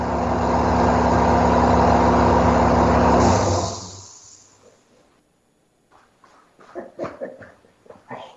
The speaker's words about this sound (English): Now, let's turn off the compressor. Uh-oh.